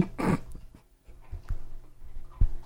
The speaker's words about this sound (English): Do you hear that sound in the background? We all just sort of paused to listen. If you hear like a weird sort of like... Chewing? Yeah, chewing sound in the background. It's one of our dogs is down here in the studio